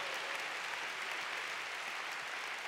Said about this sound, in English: Come on, you want to clap? Give the Lord a big clap.